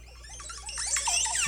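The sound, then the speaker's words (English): A Montezuma oropendola (Psarocolius montezuma), a bird, calls: a rapid run of liquid, gurgling, warbling notes that sweep up and down, growing louder toward the end, with no talking. “It's a bird.”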